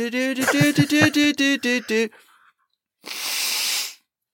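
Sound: weak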